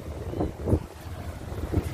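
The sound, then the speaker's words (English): Strong ocean waves roar in a steady wash of surf at Salisbury Beach, Massachusetts, on a partly cloudy, partly sunny day, swelling a few times as sets break, with gusty wind rumbling across the microphone and no voices. “The strong waves over here.”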